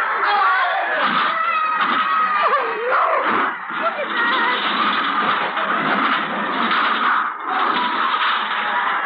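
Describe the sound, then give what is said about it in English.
A loud, unbroken din of a screaming, shouting crowd mixed with roaring car engines and occasional thuds as cars start to pile up in a chaotic rush. “The cars are starting to pile up.”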